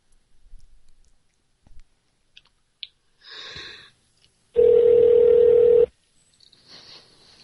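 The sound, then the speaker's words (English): A few soft clicks of phone handling as a call to the company Lock is placed, a short burst of electronic dialing tones, then a loud, steady telephone tone holds for just over a second before cutting off into faint noise. “Let's see if we can get Joseph Stone at his best on the phone here.”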